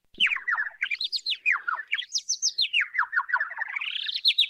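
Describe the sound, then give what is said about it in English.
Computer-generated birds chirping in a fast, unbroken stream of tweets that glide up and down in pitch, fairly loud, with no voices or other sounds. “Oh, that was birds chirping, but truly did not sound like birds. They definitely were computer birds.”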